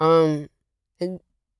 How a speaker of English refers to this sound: And since, Jesus, sorry, I just burped.